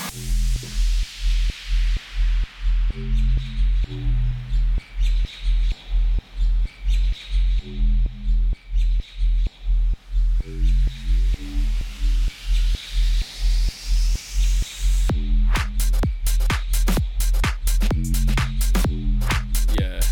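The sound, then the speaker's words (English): A homemade, loud electronic dance track with a steady pounding kick and throbbing synth bass. A rising sweep builds into a drop where sharp, rapid high hits join, with chirpy bird-like sounds woven into the mix. “We need to release some hard-hitting EDM... …”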